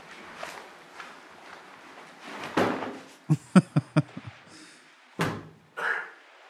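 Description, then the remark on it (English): Heavy bags being set down: a run of heavy thuds and clunks, with a loud thump, then about six quick knocks in a row, followed by two more dull bumps as the weighty bags land on a surface. “It's like, oh, boy, that's some heavy bags. First, I want to. I almost had a heart attack lifting that.”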